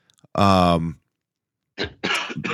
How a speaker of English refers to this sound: Wow. Are you dying over there? You got a cough like me.